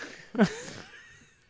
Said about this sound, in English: I know you're breathing heavy, but you got to go on the patio.